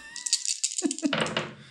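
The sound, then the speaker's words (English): Several 30-sided dice rattle and clatter together, a bright, busy jumble of hard clicks and knocks that tumbles on for over a second with no voices. “He's rolling 30-sided dice.”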